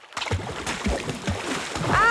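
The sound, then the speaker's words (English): Paddles dip and splash in quick, repeated strokes as a canoe moves through river water, going round in a circle, with steady sloshing and a brief rising squeak near the end. “Alf, you're paddling too fast! We're going round in a circle!”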